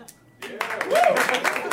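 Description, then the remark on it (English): A short pause, then an audience breaks into steady, fairly loud clapping, many hands overlapping into a dense patter, with a brief voice or whoop rising in the middle; audience members clap to show they voted. “Clap if you also voted.”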